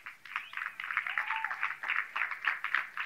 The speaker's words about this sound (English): But the reason there's a smattering of claps is because you know you haven't been doing it, even though I've been pounding it down your throat for the last 3 years.